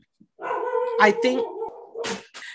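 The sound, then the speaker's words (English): A dog whimpers and howls in a drawn-out, wavering whine for about two seconds, broken by a few short, breathy yelps near the end. “Are you fucking kidding me, this dog?”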